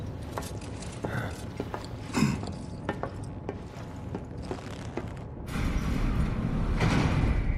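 An elevator door opens with a run of mechanical clicks and ratcheting, then a steady, louder rushing rumble as it slides apart, with no voices.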